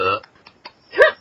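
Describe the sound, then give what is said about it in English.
A brief voiced sound opens, a few faint clicks follow, then a short, loud burp erupts abruptly near the end and quickly dies away, from a person full after eating too many Easter eggs. “Burping. I'm full.”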